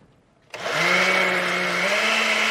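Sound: blender blending a drink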